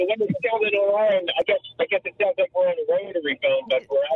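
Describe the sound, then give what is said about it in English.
A voice talks continuously over a poor cell phone connection from people traveling on the road, sounding thin, tinny and band-limited, with the muffled, hollow quality of a bad call line. “Oh, sorry, we have a bad connection.”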